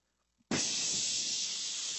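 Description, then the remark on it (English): A voice imitates the steam hiss of red-hot iron plunged into water: after a brief quiet, a loud, steady hiss starts abruptly and holds unbroken to the end. “Steam would immediately come out of that water.”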